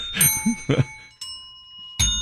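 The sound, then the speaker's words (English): Bells are struck four times in an uneven sequence as a group tunes up their bells, each bright metallic tone ringing on with long overlapping resonance. The strikes are fairly loud, with the last one sustaining to the end. “Here, let's tune up our bells, you guys.”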